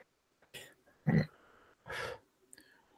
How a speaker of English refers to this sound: I went to give the beer a sniff, and it got angry. And I shoved basically beer foam up my nose.